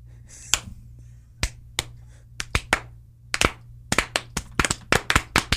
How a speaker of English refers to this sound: There's a gnat in here. I'm not clapping for myself. What? There's a gnat in my face.